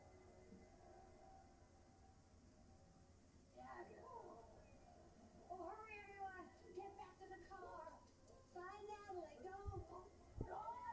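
A cat meows several times in a row, drawn-out wavering cries at moderate volume over a low background hum, with a couple of sharp knocks near the end.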